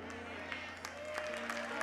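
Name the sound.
audience clapping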